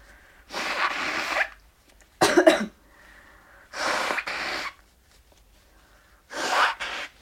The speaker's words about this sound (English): Excuse me, I need to blow my nose again. Give me a sec here.